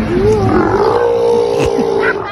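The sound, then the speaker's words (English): Sea lions at the Vancouver Aquarium roar in a loud, sustained, deep bellow with a rough, throaty tone. It holds steady for over two seconds, its pitch wavering slightly, with shorter grunting calls overlapping near the end. “So this is what they sound like, sea lions at the Vancouver Aquarium.”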